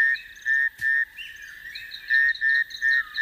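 Frogs in Madagascar calling in a steady series of short, bright, whistle-like notes, repeating every half second or so, clear, with softer chirps overlapping.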